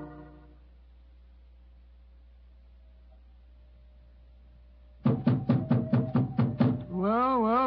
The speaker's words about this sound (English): We must have been knocking here for 5 or 6 minutes.